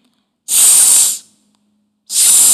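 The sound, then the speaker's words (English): A voice makes a long, sharp 's' hiss, pauses briefly, then starts a second sustained hiss, both fairly loud, imitating a snake to demonstrate the 's' sound that begins the word snake. “Snake starts with the sound S.”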